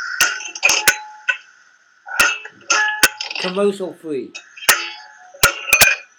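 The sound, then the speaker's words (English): Pots bang and clank in a sink as someone gets lots of water, a dozen or so sharp, bright metallic hits in irregular bursts, with a short stretch of someone talking in the middle. “Something in the sink was getting in my way. Banging pots around?”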